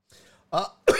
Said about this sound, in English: shit, this cough is driving me insane.